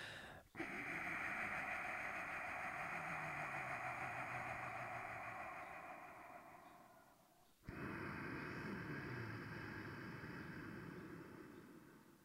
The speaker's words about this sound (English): They sometimes call it ocean breathing. And what it involves is you breathe through your nose and you regulate your breath, creating this sound.